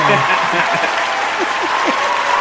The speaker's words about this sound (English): I think you'll find the prayers will work better than the cross fingers, but let's give him a round of applause.